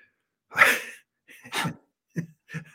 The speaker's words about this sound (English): I had to close the door because the dog is excited about somebody in front of the house.